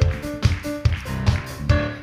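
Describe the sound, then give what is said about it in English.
An audience claps together in a steady rhythm, five sharp, loud claps spaced evenly about twice a second, with a faint sustained tone lingering underneath. “Hold on, stop clapping.”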